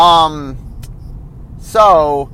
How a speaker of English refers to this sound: Sorry. I have traffic around me.